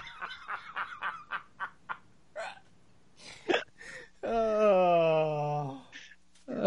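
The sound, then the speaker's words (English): A rapid string of short, sharp hiccups, fairly loud, followed by a few scattered bursts and a long, steady, buzzy tonal note before one last abrupt sound. “Are hiccups a sign of a more deadly disease?”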